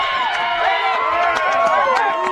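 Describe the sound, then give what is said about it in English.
A baseball crowd cheers after a leadoff double by Callie Watkins, a steady, loud roar of many overlapping voices, with scattered shouts and whoops rising above the din for the full couple of seconds. “So a leadoff double by Callie Watkins. Gets this crowd fired up here.”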